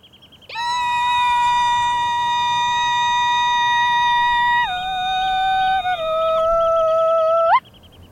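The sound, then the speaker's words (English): A single long, piercing kulning call, a Scandinavian herding call, from one voice, held steady on a high note for several seconds, then stepping down twice before a brief upward flick at the end. No talking. “Kulning Re-Listen”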